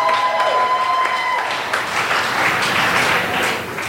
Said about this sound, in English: Clap your hands for Shane Torres.